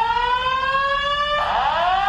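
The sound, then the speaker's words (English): A fire alarm blares loudly and continuously, its shrill electronic tone rich with harmonics and shifting into a wavering, overlapping pitch partway through, with no voices. “Fire alarm.”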